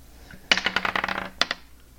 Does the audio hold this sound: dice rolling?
yes